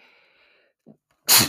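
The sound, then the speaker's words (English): A single loud sneeze bursts out near the end, preceded by a quiet stretch with a faint low hum and a brief soft breath. “That's why we need that button. Sneeze, cough, whatever you need to do.”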